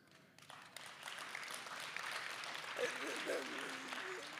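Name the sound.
audience applause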